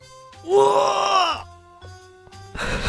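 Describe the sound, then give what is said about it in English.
A voice mimics a straining gym grunt: one loud, drawn-out groan lasting about a second, followed by quiet and then a short burst of breathy noise. “Grunting.”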